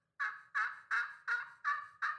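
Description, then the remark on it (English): A turkey gobble call: six rapid, evenly spaced throaty bursts in a steady rhythm, each one strong at the start and tapering off, with no talking over it. “Come here, turkey, turkey, turkey.”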